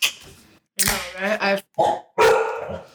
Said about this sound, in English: This week's segment, this dog's got excited for the beer.